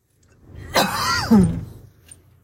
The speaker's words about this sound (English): Oh my God, I keep having to cough. Hold on one second.